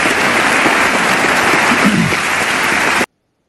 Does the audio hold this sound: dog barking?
no